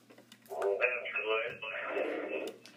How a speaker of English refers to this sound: Just wondering if you could turn your radio down in the background, sir.